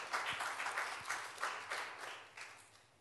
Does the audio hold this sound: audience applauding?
yes